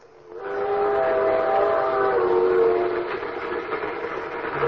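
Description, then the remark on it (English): A steam train whistle blows a loud, sustained chord for about two seconds over the steady rumble of a moving train, which keeps rolling after the whistle fades. “Ski trains.”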